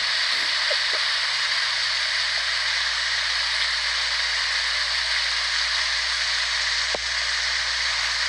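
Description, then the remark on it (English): A steady, dense rustle of wind through the leaves of a cottonwood tree about 60 to 80 feet tall along a walking trail, a continuous airy hiss that sounds almost like running water, holding an even level throughout with no voices. “there was a probably 60, 80-foot cottonwood tree along the trail that I was walking. And so I tried on several occasions to record the sound, so we'll see if we can get that recording up here.”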